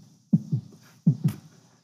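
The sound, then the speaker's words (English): A voice imitates a baby's heartbeat with two paired low thumps, a soft lub-dub repeated twice in a steady rhythm, clear with no other sounds around it. “They're going to try and to find the heartbeat of the baby, and as she gets it, she says, everything stops, and you hear the...”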